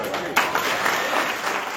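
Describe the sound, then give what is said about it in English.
A large crowd yells and cheers together in a loud, sustained roar, with applause mixed in and a sharp swell near the start, as people in the crowd chant the word "audit". “At this point, people in the crowd start yelling audit.”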